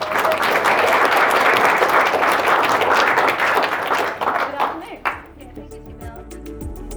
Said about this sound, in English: I want to just thank our panelists. Big round of applause.